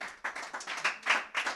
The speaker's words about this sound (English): Oh yeah, you guys, clap your hands if you didn't go to summer camp.